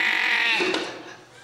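A single sheep bleats loudly and close by, a wavering, nasal baa that holds for about a second before trailing off, with no other sounds around it.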